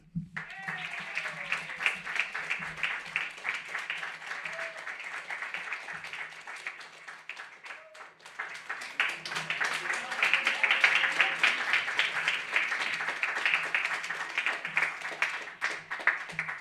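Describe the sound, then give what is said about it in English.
A crowd claps and cheers steadily for about sixteen seconds, welcoming the next reader at a reading event: a dense crackle of many hands that swells louder midway, with scattered whoops rising above it. “Our next reader is so famous, you should all know they have one name here, and you're going to give them a big round of applause because that one name is probably enough.”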